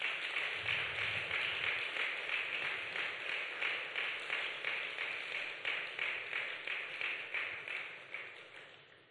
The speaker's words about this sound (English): Let's raise a clap offering unto the Lord.